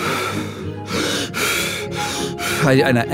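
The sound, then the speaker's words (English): Several forceful, rhythmic breaths rush in and out, each a loud airy blast with short pauses between, followed by a brief strained vocal sound at the end, as a climber at high altitude uses a breathing method. “So I go back into the breathing method, and I just...”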